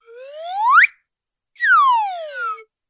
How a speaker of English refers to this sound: I wasn't positive what it was called, but apparently it's called the up-down whistle